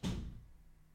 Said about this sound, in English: Did you hear the door slam? It wasn't even a door slam. It's a door close.